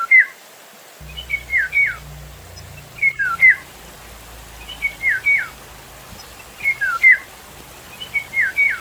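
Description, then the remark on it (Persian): A golden oriole sings clear, fluting whistled phrases, repeated in short bursts every second or so over a faint low rumble, distinct, with no voices. “یا پرنده دیگه ای که پری شاهرخ نام داره.”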